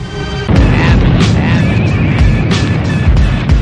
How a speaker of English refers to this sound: Welcome to the So Be It lightning round. That was lightning. That was impressive.